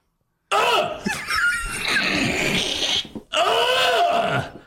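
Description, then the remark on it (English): A voice imitates someone yelling while vomiting: two long, strained, retching bellows with a rough, gurgling edge, loud and harsh, separated by a brief gap. “he just yells when he throws up. He doesn't throw up like a normal person.”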